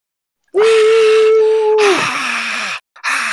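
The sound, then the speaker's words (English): A single voice imitates a cheering crowd going wild at a fight with a loud, hoarse, breathy roar. A low droning tone holds, then slides downward, followed by two shorter rasping bursts. “What was that golem sound? Was that the crowd”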